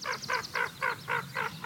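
A hooded merganser calls in a steady run of seven hoarse, croaking notes, evenly spaced, with no other voices around.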